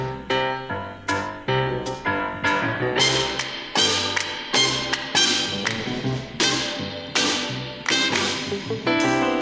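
Lively, loud instrumental space age pop music from a CD, with bright, punchy stabs landing in a quick, bouncy rhythm over rich sustained harmonies, playing steadily with no voices.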